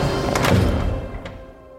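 A heavy, great door to a courtyard swings shut with a deep, booming thud, followed a moment later by a second, sharper knock as it settles, then a fading low rumble.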